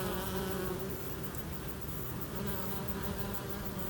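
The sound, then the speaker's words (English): A steady buzzing of bees, a continuous droning hum that holds at an even level throughout with no pauses and no voices. “Or maybe plant some wildflowers to help feed the bees?”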